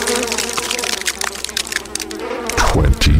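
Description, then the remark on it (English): A dense, steady drone of buzzing flies, their whining hum overlapping and swelling in waves, with a louder, rougher burst of buzzing toward the end. No voices. “Their two-month-old daughter was recovered from a makeshift crib of rotting flesh, her pale baby skin crawling with maggots and flies.”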